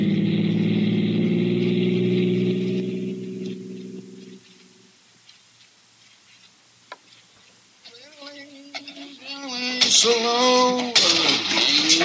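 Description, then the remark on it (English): The engine of an overheated car idles with a steady low rumble for several seconds, then cuts off, leaving quiet rustling before voices begin talking. “In a minute, I'll stop the car and let you know what is yours.”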